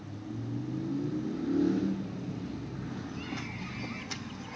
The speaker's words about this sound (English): Whoever's driving in the background, people, my apologies for that loud-ass, obnoxious-ass engine in the background if y'all heard it